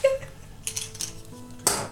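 Dice clatter across a hard surface in a few sharp, bright clicks with brief ringing tones between them, ending in one louder knock, as a D100 is rolled. No one speaks.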